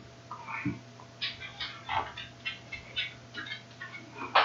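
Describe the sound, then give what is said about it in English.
A small bird chirps indoors in a rapid, irregular series of short, high tweets, fairly soft, over a faint steady background hum with no one talking. “Hey, bird.”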